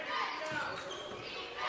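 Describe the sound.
A basketball being dribbled on a court, a few bounces thudding under a steady wash of gym crowd noise and indistinct voices.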